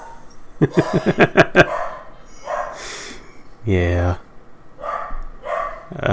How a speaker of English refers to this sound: There's a dog barking. That's our third host. Yeah. Introduce our third host. Yeah. He's very upset about something. I don't know what.